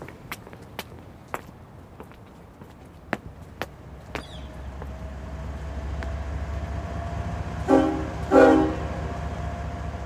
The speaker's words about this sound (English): That was the sound of a train filling up its hopper cars at the grain elevator, which is located adjacent to the train tracks. We're right behind the train station in between the train tracks and the Alabama River